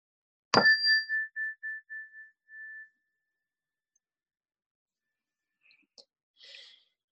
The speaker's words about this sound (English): We'll begin the meditation with the ring of the chime.